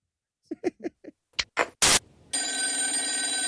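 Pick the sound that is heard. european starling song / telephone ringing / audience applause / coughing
telephone ringing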